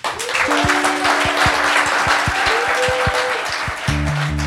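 A large audience bursts into sustained applause, a dense wash of clapping filling the room at steady loudness, with a low musical tone and rhythmic beat playing underneath.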